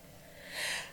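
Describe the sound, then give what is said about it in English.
A single breathy sneeze bursts out as a short hiss of air that swells and fades within a second, with no talking around it. “Achoo. Bless you.”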